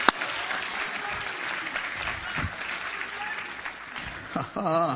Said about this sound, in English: Thank God for that. Somebody praise him with a hand clap.